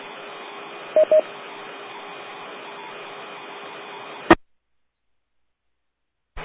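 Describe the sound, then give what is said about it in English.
A weak, noisy amateur radio transmission from a station checking in to a Phoenix net: steady band-limited hiss with two quick tone beeps near the start, then an abrupt squelch click and silence, a brief burst returning at the very end. “Okay, we'll go ahead and leave it as that for now, and if it's, if that's you, you might want to see if you can improve your signal before we come back around during reports.”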